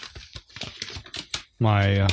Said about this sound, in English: Press that on my keyboard, the map crumpling sound effect. Sounds just like a map. It's amazing. It does. Yeah. How does a map? That's not a map crumpling though, right? That's not a map crumpling. That's you opening a map.